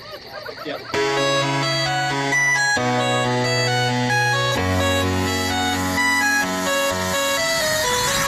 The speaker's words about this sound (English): Okay. So here's the first one. And these are all music videos. Can you hear it?